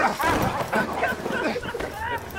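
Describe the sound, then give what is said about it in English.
A dog barks and yips in a quick run of sharp, excited bursts, fairly loud, mixed with a muddle of background voices. “Well, there's nothing like waiting to get muzzle struck in the face from a dog.”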